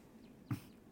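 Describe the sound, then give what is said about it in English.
A downy woodpecker gives one short, sharp call note, a quick single pik that stands out clearly against a faint, steady outdoor background. “That's a pecker.”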